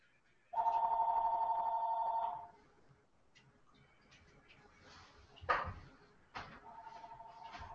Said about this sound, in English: But yeah, let me answer that phone. I'll be right back.